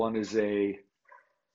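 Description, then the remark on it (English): A pet dog barks in the background: one long, drawn-out bark lasting most of a second, followed after a short pause by a brief, fainter yip. “my dog in the background, I apologize.”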